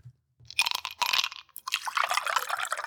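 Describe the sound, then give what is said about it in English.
Whiskey being poured into two glasses: a couple of quick glassy clinks, then a steady gurgling pour that runs for over a second, with no voices. “Pour 2 glasses of whiskey there.”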